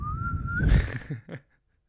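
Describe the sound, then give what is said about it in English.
A person whistles in imitation of a kettle's bird-shaped spout: one steady tone that slowly rises in pitch, then breaks into breathy, rough bursts and two short puffs before falling silent. “So when the little birdie when the water is done, the birdie sings a beautiful song.”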